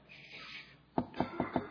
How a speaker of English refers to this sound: don't knock on the trunk. You need to be quiet.